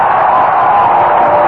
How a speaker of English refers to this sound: And the crowd is cheering the final score on the scoreboard. Cleveland defeated Oakland 3-1.